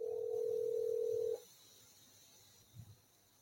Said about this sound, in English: you tell me when you're calling that that phone number. Yeah, it's calling. Yeah, it's ringing. Right, it is ringing now.